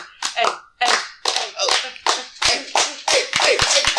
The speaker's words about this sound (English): Hey. Okay, stop. That's enough. They don't want to hear you clap. They're probably like driving on the highway and people think that their cars are like the tires are popping, right?